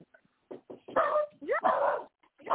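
A dog, Mr. Bobo, barks and yips in a quick, uneven series of short bursts, moderately loud, with a whiny, rising tone to some of the calls.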